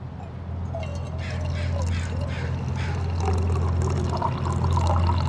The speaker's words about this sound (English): Oh, yeah. Look at those coffee sounds.